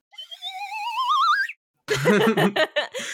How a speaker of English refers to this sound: Because Oak, our editor here, Oak put in the sound of a slide whistle so that people know that you exist.